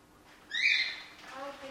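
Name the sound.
cockatiel calling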